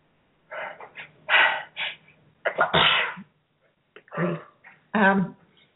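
A person sneezes loudly, several sharp bursts spread over a few seconds with quick breathy inhales and short pauses in between, no talking.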